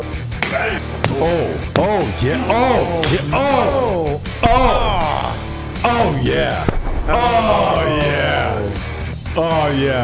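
A series of sharp, loud slaps land on skin at irregular intervals, mixed with exaggerated groans, yelps and whooping vocal reactions throughout.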